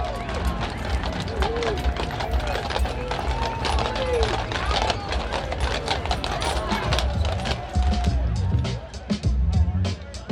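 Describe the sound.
Heavy Budweiser Clydesdale horses' hooves clip-clop in a steady, busy rhythm over pavement as they set off to make a block around a stadium, set against a loud outdoor crowd with chattering voices throughout.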